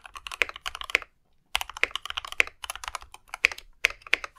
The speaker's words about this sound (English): God, you can't type. You missed that key. For those of you who wanted keyboard ASMR, here you go. There you go. Bam.